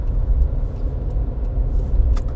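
Steady low rumble of a car in motion, heard from inside the cabin on the road home from an event in New England, with continuous engine and road noise and a few faint higher clicks and rattles.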